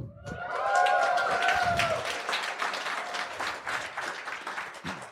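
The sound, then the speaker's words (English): A live audience at the Eureka Hotel in Melbourne bursts into sustained applause, clapping the end of Movie Maintenance. Dense clapping lasts for several seconds, with a few cheers rising over it, before it gradually thins. “That's good because it's a bit like you're clapping the end of movie maintenance.”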